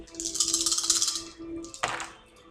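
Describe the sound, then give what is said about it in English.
Four dice are rolled, rattling and clattering for about a second and a half in a rapid, bright jumble of clicks, then a sharper knock as they land and settle, giving five successes, with no one speaking. “You stumbled into a nest of giant fist-sized hornets, but it just made you mad. So, 4 dice.”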